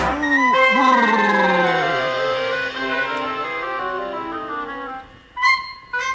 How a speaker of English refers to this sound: Oh, I know today is Wednesday, and this is how I know. It is always on a Wednesday that the winds begin to blow.